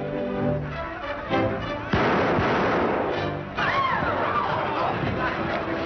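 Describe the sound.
A single sharp gunshot cracks out about two seconds in, as a singer shoots a man rushing for the door from his table where a torch singer performs, over murmuring voices and music, followed by a rush of loud, noisy crowd commotion.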